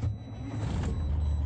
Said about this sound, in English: Shall I start the pre-trip? Absolutely. Processing. Engine starting. Please stand clear.